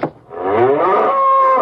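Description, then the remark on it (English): A single loud cow moo, starting low and gliding upward into a long, steady, drawn-out bellow that holds for over a second before cutting off. No one speaks. “Now, I'm going to search this saloon for them cattle.”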